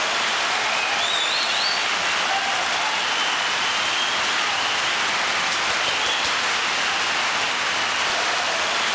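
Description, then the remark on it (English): Loud, sustained applause: a dense, steady wash of clapping that holds at an even level for about nine seconds without letting up, with no voices over it. “That applause is loud as hell.”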